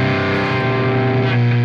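A loud, steady electrical hum from a power supply, with a buzzy, distorted edge and strong low harmonics, droning continuously with no pauses and no voices.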